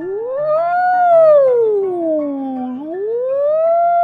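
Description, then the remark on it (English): A loud human voice imitates a police siren for the character Sock Cop as he goes after a speeder on his first day on the job, a smooth wail that rises, falls, then climbs again over about four seconds, with no other sounds around it. “All right, time to hit the sirens.”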